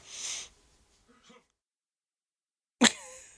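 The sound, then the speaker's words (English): A breathy rush of air fades into a pause, then a single sharp, explosive sneeze, attributed to allergies, bursts out and trails off quickly. “Bless you.”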